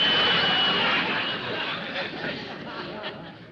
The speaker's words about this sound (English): The steam kettle's making too much noise.